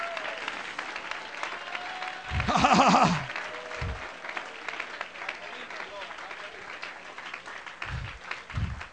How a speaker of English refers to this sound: Oh, clap your hands. Clap your hands. Worship God.